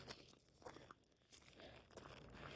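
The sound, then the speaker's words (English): Footsteps crunch over tiny rocks on an afternoon walk in a steady walking rhythm, each step a gritty, scraping burst, soft, with no voices. “You hear the crunch crunch of the tiny rocks under my feet.”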